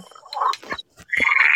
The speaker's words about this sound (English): You hear what the frogs are telling me?